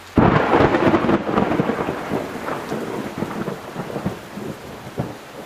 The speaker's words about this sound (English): With all this rain, some of the roads around here flooded out.